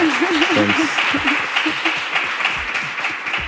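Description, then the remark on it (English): An audience at the IAA applauds a guest with a dense, steady wash of many hands clapping for the full few seconds, fairly loud, while a voice briefly speaks over it near the beginning. “Can we give a round of applause to our guest?”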